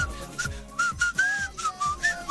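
Someone whistles a short, bouncy melody of quick rising and falling notes, clear, over a steady thumping beat with no talking.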